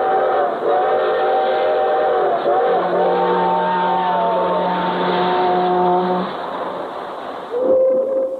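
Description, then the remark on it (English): Sustained freight train whistles blow in overlapping chords over the steady rumble of rolling freight cars, loud, with a shorter whistle blast sounding near the end. “Hear 'em? The whistles of the freight trains?”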